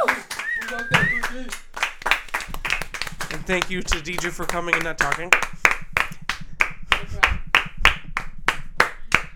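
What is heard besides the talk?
hand clapping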